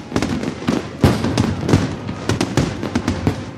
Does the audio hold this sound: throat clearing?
no